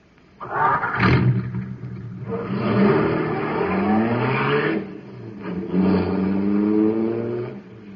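A powerful supercharged car engine running on super fuel roars loudly, revving in rising and falling surges with a brief pause midway, heard alone without any talking.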